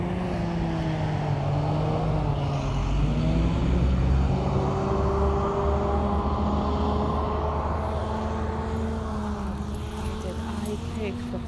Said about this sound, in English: This is a school bus approaching right now.